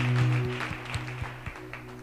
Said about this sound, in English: And I want us to take this opportunity to just appreciate him. Let's give him a round of applause as we appreciate the work that he has done.